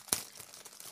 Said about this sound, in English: Should I eat it anyway? Get your loud and crunchy and eat it on mic while I read this fairly long review, okay?